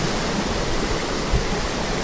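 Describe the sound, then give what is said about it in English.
Water pours steadily into a mountain plunge pool at a wild trout fishery, a dense, continuous rushing roar with no breaks, fairly loud, with no voices present. “And for those of you who don't get to experience this type of plunge pool, wild trout fisheries with no garbage, there's no helicopters, and there's no airplanes.”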